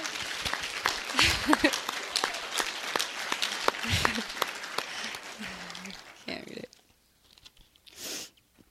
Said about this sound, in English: so I think we should give him a clap, too.